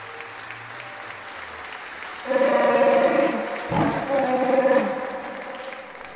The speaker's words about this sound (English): The last reverberations of celebratory applause mixed with the roar of a Wookiee finally die down, leaving an expectant hush over the assembled crowd of Alliance personnel in the main hall of the Great Temple on Yavin 4.